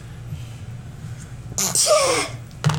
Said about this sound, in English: Sorry, I just sneezed. I sneeze different now that my allergies are kicked in.